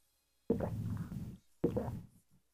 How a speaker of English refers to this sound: I'm drinking some water. Clear my throat. Thank you.